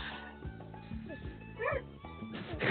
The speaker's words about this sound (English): Barking and growling and running.